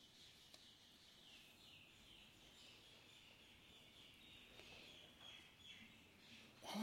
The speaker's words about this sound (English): Shall we wait for the birds to die down?